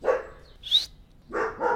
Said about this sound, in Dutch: Dat is Tony, de hond, die ook in de buurt... Ja, is nu aan het scharrelen en doet heel irritant.